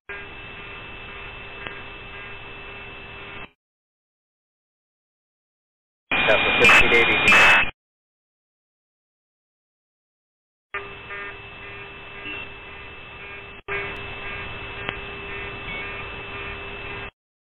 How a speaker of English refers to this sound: Southwest 1380, if you're trying to get me, all I hear is static.